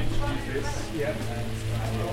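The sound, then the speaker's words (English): Heavy rain suddenly pours down in a steady, dense hiss that doesn't let up, with people sheltering from it and talking underneath the downpour. “So it's absolutely tipping it down and we're all sheltering from the rain.”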